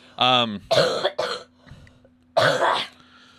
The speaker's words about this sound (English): So yeah, I've been having a whooping cough. Do you? I don't know what the fuck I have, but I've had a cough for like 5 weeks now, it feels like.